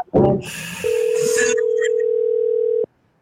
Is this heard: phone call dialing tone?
yes